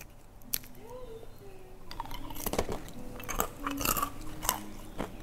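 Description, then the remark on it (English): Someone bites into a caramel-covered nut snack with sea salt and chews it, a series of loud, sharp crunches in irregular bursts over a few seconds. “Do you hear how crunchy that is?”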